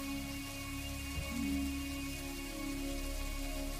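Steady rain hisses evenly throughout, with a low rumble of thunder swelling briefly about a third of the way in before fading back under the downpour. No one speaks.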